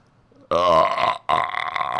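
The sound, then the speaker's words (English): Two long, loud, croaking burps come back to back, resonant, with only a brief gap between them and no talking. “I hadn't burped yet.”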